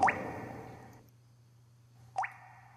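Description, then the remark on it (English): A couple of raindrops as rain starts to fall: two separate watery plops, each with a quick upward-bending pitch, about two seconds apart, over a low steady hum with no talking. “It's starting to rain on me.”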